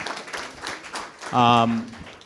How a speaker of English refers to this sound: The worship team did an amazing job. Yeah, they did. Always. Got to give them another round of applause.